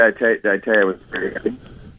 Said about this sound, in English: Did you tell me what? Your phone's cutting out on me. What was that?